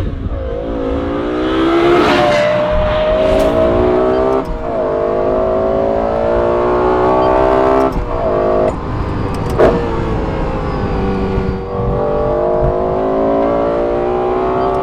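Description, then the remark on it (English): A Lexus LFA V10 engine revs hard, its loud, high-pitched harmonic wail climbing and dropping through several throttle blips and sustained pulls, with no voices. “Even if it's been 5 years since you last drove a Carrera GT, you drive an LFA and you're just like, this is the best sounding noise that has ever been put inside of a car.”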